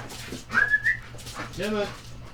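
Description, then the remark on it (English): Dogs whimpering and barking: a thin, high whine rises and holds for half a second, then a brief lower whimper or bark follows, moderately loud over a steady low background hum. “Hey, never mind the dogs. They're going to take care of themselves.”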